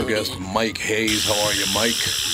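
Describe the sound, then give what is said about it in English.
A phone ringtone mimicking a rattlesnake's rattle starts partway through in a studio, a steady, dry, high-pitched buzzing hiss that continues under people talking in surprise. “Yeah, that's the phone. It's a rattlesnake in the studio.”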